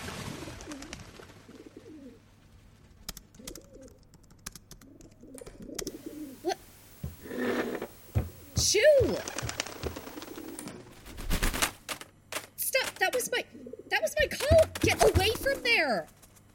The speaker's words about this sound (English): Filthy trash doves!